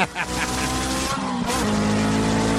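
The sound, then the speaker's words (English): A car's tires screech loudly as it peels away, a sustained, shrill squeal over a revving engine that holds steady for a couple of seconds. “That's you guys leaving tonight.”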